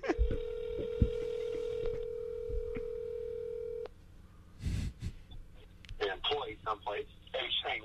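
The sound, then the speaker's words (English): A steady telephone tone with a few clicks and beeps as a call to Scarface is dialed, then it cuts off. A short rustling burst follows and a voice starts talking over the line. “By the way, are you really calling Scarface?”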